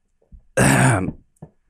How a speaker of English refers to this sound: So I kind of like clear my throat and say for like 8 years.